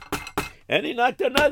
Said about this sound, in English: Well, anyways, what happened was this, Reb Naftulcha went, and he went around, and he was knocking on doors. And he knocked another door.